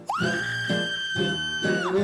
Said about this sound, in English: where in treetops that glisten, the Krampus still listens to the sounds of the screaming down below.